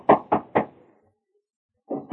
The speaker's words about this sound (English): In the meantime, Riggs had gone to call on Jim Flood. We hear him as he raps on the door of Jim's home.